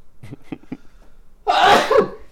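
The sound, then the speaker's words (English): A few short, quick inhales build up before one loud sneeze bursts out, a sharp explosive release that trails off over about half a second. “hold up, I got to sneeze, I think.”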